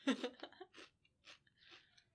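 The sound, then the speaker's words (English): A Pringles Loud Fiery Chili Lime potato chip crunches loudly, followed by several softer, rhythmic chewing crunches that fade over about two seconds. “Give it a crunch.”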